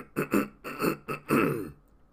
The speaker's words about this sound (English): Whoa, what happened to my voice there? Let me clear my throat.